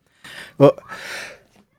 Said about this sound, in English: I'm sneezing so much today. Allergy season.